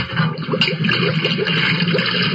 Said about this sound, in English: Then he blinked his eyes as more water flowed into the vessel. He turned off the water cock. The noise worried him. Or perhaps he realized that more water would only take him further down into the Hudson River.